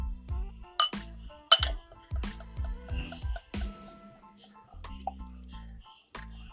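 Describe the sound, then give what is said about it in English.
Bright glass clinks ring out several times in an irregular sequence, each with a brief resonant shimmer, over a low background rumble and no talking. “Glass, y'all.”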